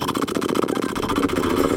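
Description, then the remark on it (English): As a breathing exercise, a person breathes out through loosely closed lips in a horse-like lip trill, a steady, fluttering buzz like a small idling motor that holds for about two seconds with no talking. “to make that noise that horses make when they breathe out through their mouths and their lips tremble.”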